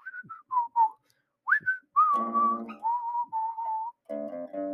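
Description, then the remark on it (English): A person whistles a cheerful, bouncy TV theme tune, with short clipped notes giving way to longer sustained tones in a steady, tuneful rhythm, no talking. “And I'll do the whistling.”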